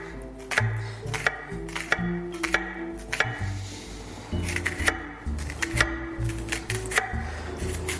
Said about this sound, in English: So let's do a little prep. Going to dice up my onion real quick.